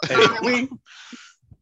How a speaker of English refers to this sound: Excuse me. I coughed. I apologize for coughing.